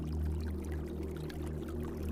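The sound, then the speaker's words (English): A waterfall pours steadily without pause, a dense continuous roar with a deep low rumble underneath, fairly loud, with no voices. “You lose yourself in the persistent whispers of the waterfall and staccato pops and crackles of burning wood.”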